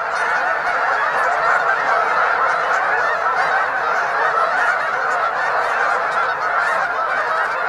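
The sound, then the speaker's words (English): A dense, continuous chorus of honking from a flock of hundreds of geese taking off almost at once from a marsh, loud, with wings beating and water stirring, layered calls overlapping steadily, with no voices present. “So close I could hear the beating of the wings, the stir of the water, and the unmistakable honking.”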